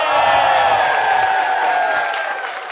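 A crowd claps and cheers loudly and steadily, a dense wash of applause with voices whooping and shouting over it, easing off slightly toward the end.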